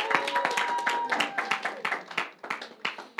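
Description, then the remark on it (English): A round of applause from a group, dense overlapping claps with a few voices mixed in, thinning into more separate, sporadic claps toward the end. “You can give him a round of applause because that was helpful.”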